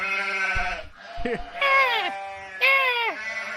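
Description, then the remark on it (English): A sheep bleats loudly, several wavering calls in quick succession, the last two sliding downward in pitch, with no other sounds around them. “Sorry, all I got is sheep.”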